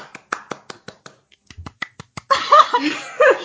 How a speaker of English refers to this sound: The fact that this one just pushed those barriers to an absolute perfect score. Well done, VelociPastor. A round of applause.